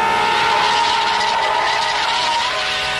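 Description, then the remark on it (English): A semi-truck's tires skid toward two people on foot in a loud, continuous screech that holds steady for about three seconds, harsh, with no voices. “Just then, while making that nightmare of a daydream, the hopes for the show rise a little as a semi-truck seems eager to run both Shore and his friend down.”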